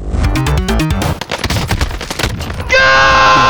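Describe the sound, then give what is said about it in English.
Rapid bursts of video game gunfire as the player shoots an opponent rattle off in fast, loud volleys, then give way to a steady, bright electronic tone that holds to the end. No one speaks. “I'm shooting the guy.”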